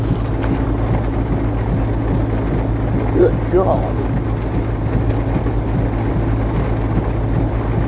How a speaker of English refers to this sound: This is something else. I haven't seen it rain this long in a while.